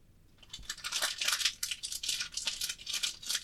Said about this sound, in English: I'm eating a sandwich.